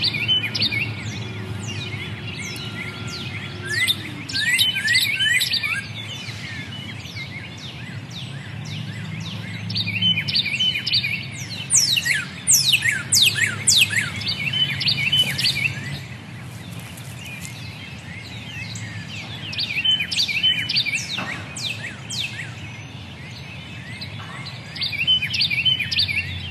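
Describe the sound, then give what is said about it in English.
Many birds chirp and trill in a steady outdoor morning chorus at the top of Mount Sequoia. Their calls overlap, with a soft low ambient rumble underneath and no talking. “But before that, a few seconds of calm provided by morning birds at the top of Mount Sequoia, recorded ahead of this weekend's heavy rains.”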